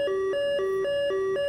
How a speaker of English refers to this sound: An alarm goes off above you that kind of startles both of you, and a red light begins to spin, and you hear, incoming aircraft, 6 o'clock.